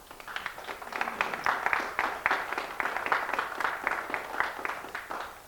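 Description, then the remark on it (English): An audience claps steadily for several seconds after a poem reading, a dense patter of many hands at moderate loudness that holds fairly even throughout, with no voices over it. “you don't have to clap after each of the poems.”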